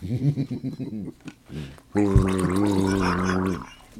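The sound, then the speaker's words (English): Someone gargles beer in the throat as a sound effect: a burst of choppy, bubbling voiced gurgles, a short pause, then one long, steady, wobbling gargle held for over a second before it cuts off. “Worst gargling sound effect ever. Don't do it with the beer.”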